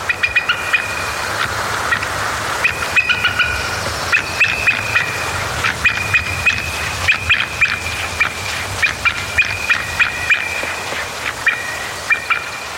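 An adult bald eagle gives its chatter call, a threat or territorial call made when another bird or a human approaches the nest site: high, thin piping notes repeated in quick staccato bursts, recurring steadily throughout over a low, constant background rumble.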